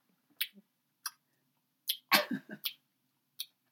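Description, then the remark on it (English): A person imitates an old cat cleaning herself in a house, making a few wet, smacking licks with their mouth at irregular intervals and a fuller slurping flurry midway, fairly quiet. “And all I have to say is I'm going to do my impression of what the sounds are in my house. First, it's the old cat cleaning herself.”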